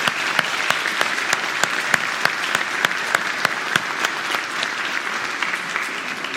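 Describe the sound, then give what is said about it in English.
An audience claps to give visitors a Texas welcome, a dense, steady patter of many hands with a few sharper claps standing out, holding at an even level for several seconds with no talking. “That's about all I know of sign language. Clapping.”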